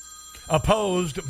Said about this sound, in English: I'm going to go ahead and just cancel that because my phone is on. Very unprofessional of me.